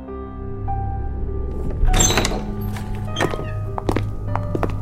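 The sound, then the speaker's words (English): Heavy doors into a truck bay grind open with a burst of mechanical noise, followed by a few dull thunks, all over a steady low industrial hum. “The truck bay's through those doors.”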